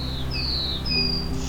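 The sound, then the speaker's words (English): A black-throated blue warbler sings its 'beer beer bees' song in a hilly conservation area, a short series of thin, high, buzzy notes, a few drawn-out tones in a row, set against a steady low rumble with no voices. “I've got a black-throated blue warbler here with a really interesting song.”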